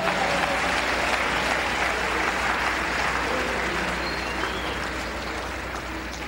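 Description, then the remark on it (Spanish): Loud, sustained applause from an audience giving a strong round of applause to the Lord, a dense steady wash of clapping that holds strong for about six seconds and eases only slightly toward the end. “¿Cuánto un aplauso fuerte al Señor?”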